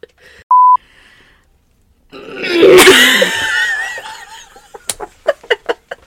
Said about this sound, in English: That was my way of trying to quietly clear my throat. Sounded like she threw up in her hand. I tried to be so quiet. And then I realized I wasn't getting it, and I was like, fuck it, I'm going full force.